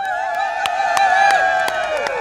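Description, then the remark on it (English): A lively protest crowd assembling around the Rising Tide cheers and whoops for Bob Brown, with sustained high, wavering calls and sharp claps or beats punctuating it at fairly regular intervals, loud. “Right, so that's Bob Brown, and this is the crowd assembling around the rising tide here.”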